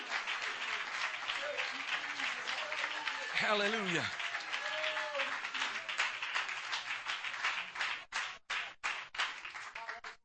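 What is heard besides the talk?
audience clapping hands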